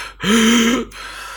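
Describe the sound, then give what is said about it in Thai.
A single drawn-out, strained wheezing breath with a rough voiced groan, fairly loud, like an old man struggling to breathe; it sounds like a person imitating with their voice the breathing of a creature coming closer. “แล้วเขารู้สึกว่าไอ้สิ่งนั้นเนี่ยมันเข้ามาใกล้มากแล้วเขารู้สึกถึงแรงสั่นสะเทือนมันเหมือนกับคนแก่ที่พยายามหายใจอะครับเป็นเสียง”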